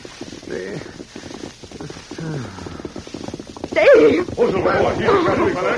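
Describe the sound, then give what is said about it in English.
A man speaks briefly, then the fast hoofbeats of a masked man on a white horse and his companion rush in, growing loud as the galloping approaches over the last couple of seconds. “It's a masked man on a white horse and an Indian.”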